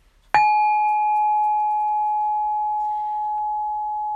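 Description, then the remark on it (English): A single bell is struck once, giving a sharp clear ding that rings on as a steady, pure tone, fading only slightly over several seconds. No voices are heard. “Gonna do the bell.”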